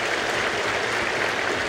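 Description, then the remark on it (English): A large crowd of party congress delegates applauds after unanimously backing changes to the party charter, a dense, steady wash of clapping that holds at an even loudness throughout, with no distinct voices above it. “So indicating unanimous support, followed by applause.”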